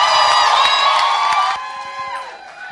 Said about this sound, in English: Well, right now, I want you to also clap your hands again, because the party is not over yet.